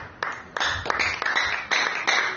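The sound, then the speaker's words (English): An audience claps their hands together on the name of Jesus, a dense, steady patter of many palms with sharper bursts every fraction of a second, fairly loud and without any talking over it. “Clap your hands on the name of Jesus.”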